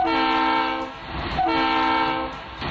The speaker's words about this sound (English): Oh, you mean 2.5 toots? Oh, 2.5 toots. Toots. Of, yes. the nostalgia train.